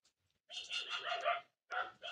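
A dog barks and yelps in two bursts, a longer run of rapid, high-pitched calls followed by a shorter one after a brief pause. It is moderately quiet, with no talking.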